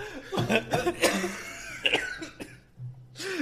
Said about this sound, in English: I'm sorry for your terrible cough.